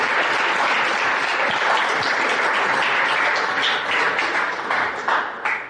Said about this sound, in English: Without further ado, we all know this gentleman. Let's give David Stern a big round of applause.